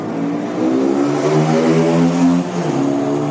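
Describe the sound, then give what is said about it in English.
A motorbike engine revs loudly, its droning pitch climbing and sliding in steady waves as if pulling away, continuous for a few seconds with no talking. “Listen, doesn't it sound like he's sort of sitting on a motorbike and he says, right, goodbye, and just drives away on a motorbike?”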